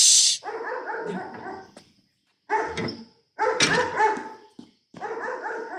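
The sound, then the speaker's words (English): A dog left home alone barks and yips in several bursts, with short pauses between them, loud, with some whining in the mix. “They left their new doggy home alone.”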